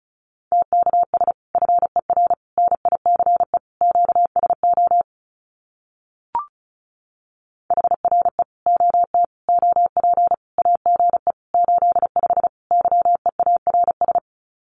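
Fast Morse code sending common amateur radio QSO phrases at about 35 words per minute: a single steady mid-pitched tone keyed in rapid dots and dashes, with a pause and a brief click midway before the sending resumes. No voices.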